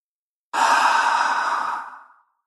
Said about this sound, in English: And as I say that, I hear sweet Leroy Brown about 6 feet away from me on the floor. And he does one of those big settling in dog breaths.